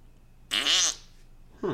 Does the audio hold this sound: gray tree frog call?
no